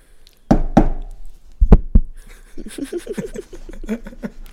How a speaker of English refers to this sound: Spirit guides, let Spirit me know. Guides. Knock on that deck real quick. Give it a little good luck tap.